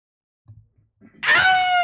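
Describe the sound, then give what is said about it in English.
After a moment of faint low rustling, a person lets out a loud, sustained howling cry, a voice imitating a werewolf howl that starts abruptly and holds its pitch, sliding slightly downward. “Fail, let me hear your werewolf.”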